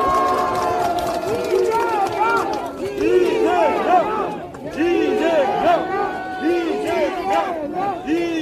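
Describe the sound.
A large crowd roars and cheers at an outdoor political rally in Gwangju, South Korea, as Democratic Party leader Lee Jae-myung is introduced to speak. Many voices shout together in loud, continuous waves with a dense wash of noise that sounds like clapping mixed in.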